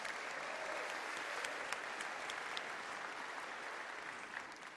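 Steady applause from an audience, a dense wash of many hands clapping at an even level throughout, with a few sharper individual claps standing out and no voices.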